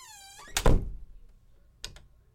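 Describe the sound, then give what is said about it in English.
A chair is pulled up to a bed: it drags with a brief squeaky scrape and lands with a heavy wooden thunk, followed a moment later by a softer knock. No one speaks. “He pulled a chair up to the bed and gathered his thoughts.”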